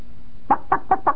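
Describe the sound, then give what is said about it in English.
A voice imitates a chicken clucking: four short, throaty clucks in a quick, steady rhythm, clear, with no other sounds. “That's a chicken doing something else.”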